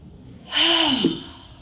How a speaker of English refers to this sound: So you need to reset. And that's the B for breathe. So breathing in through the nose.